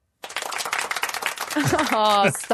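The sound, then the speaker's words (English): A soft golf clap for a correct quiz answer: a quick, steady patter of light claps for about a second and a half, ending as a brief voiced exclamation rises over it. “It's just a little golf clap.”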